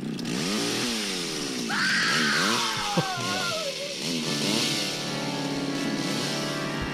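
A chainsaw roars and revs up and down, its whining engine rising and falling, while a man lets out drawn-out, panicked screams over the noise.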